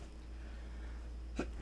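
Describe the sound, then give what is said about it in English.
A short, sharp sneeze bursts out near the end over a low, steady background hum, followed by a faint second puff of breath. “Bless you. Bless you.”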